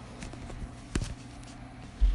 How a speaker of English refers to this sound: And welcome back to Pushing the A, here in what is going to be a mammoth chapter with a little white noise from the dishwasher in the background. Let's see how annoying this is.